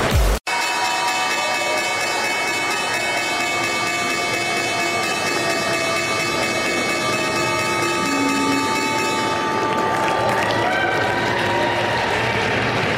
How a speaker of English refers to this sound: First move here at the New York Stock Exchange and the opening bell for the third time this week.